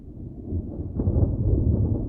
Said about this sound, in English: For an instant, it flickered like a fluorescent light struggling to come on, and then, with a deep roll of thunder, it disappeared.